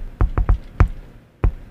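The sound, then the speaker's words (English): Five dull knocks with a thumpy low end, three quick ones then two spaced apart, made by rapping on the body of a microphone to stand in for a door knock. “You have to hit, like, the body of your mic or something, or maybe your shield.”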